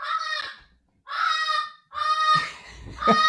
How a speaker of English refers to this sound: Well, ladies and gentlemen, I'd like to introduce you to my parrot named George. Hey, we made almost through 3 episodes before George made her first appearance.